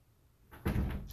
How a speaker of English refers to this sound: Now shut the door.